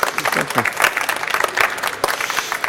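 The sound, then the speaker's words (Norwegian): An audience claps steadily for a few seconds, a dense, even patter of many hands welcoming a guest from Eksfin, with a voice briefly heard over the applause. “Gi han en applaus.”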